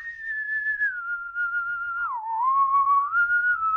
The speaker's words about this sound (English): Stop whistling and go to sleep. It's late.